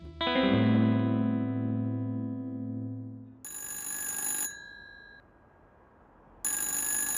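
telephone ringing

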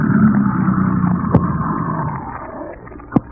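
car engine running

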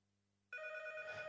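telephone bell ringing

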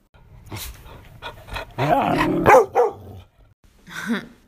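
dog barking

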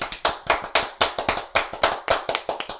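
hands clapping

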